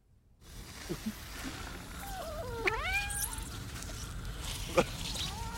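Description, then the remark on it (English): A female cat lets out a drawn-out, wavering meow near the middle, moderately loud, with a shorter faint cry near the end over steady background noise. “Why is the cat melting?”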